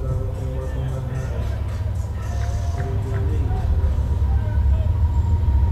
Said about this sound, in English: Back foot on the first base side of the pitching rubber as we got another train going by outside the right field wall, and the pitch comes high and inside to Escher for ball one. This must be a rail hub here in Ruston.